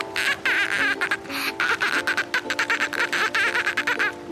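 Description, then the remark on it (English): A child from Maui, Hawaii, does a dolphin impression: a loud, continuous stream of high, squeaky chattering and clicking with quick, stuttering pulses and bright whistle-like tones, no ordinary speech. “that was definitely the best dolphin impression I've ever heard.”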